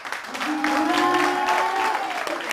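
Loud, steady applause from an audience, a dense wash of clapping that holds for a couple of seconds, with high cheers and whoops rising over it.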